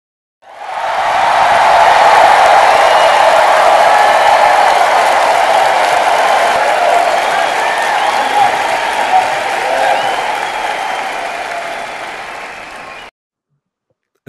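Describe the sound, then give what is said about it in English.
Sustained audience applause welcoming a guest speaker, a dense wash of many hands clapping at steady volume for about twelve seconds before stopping abruptly, loud. “And as usual, please let's give him the compo applause.”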